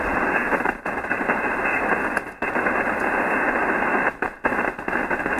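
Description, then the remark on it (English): Steady hiss of shortwave radio static on the 3819 frequency while trying to make a call fills the air, dense and continuous with a sharp upper cutoff, broken by a few brief dropouts where the noise momentarily cuts out. “A lot of static here, too.”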